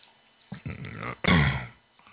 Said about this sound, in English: excuse me, I have a cough and I can't understand what this cough is.